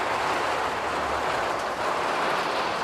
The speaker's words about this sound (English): Oh my God. He said it's in, maybe we have to stop recording this to like wait for this rain to go.